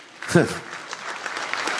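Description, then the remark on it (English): Sparse, scattered clapping from an audience, a thin patter of hands rather than full applause, with a brief voiced exclamation near the start. “Not everybody's clapping.”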